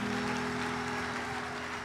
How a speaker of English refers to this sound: Can you clap your hands for this testimony?